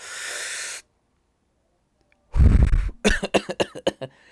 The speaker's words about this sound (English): Nothing bad, right? I like a little, I probably didn't hit it right all the way, but a little cough